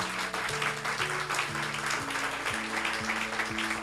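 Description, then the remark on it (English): A crowd at a storytelling event applauds its storytellers steadily, dense clapping that stays loud throughout, while music with a rising series of low notes plays underneath. “Another round of applause for our storytellers.”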